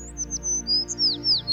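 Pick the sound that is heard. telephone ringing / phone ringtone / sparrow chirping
sparrow chirping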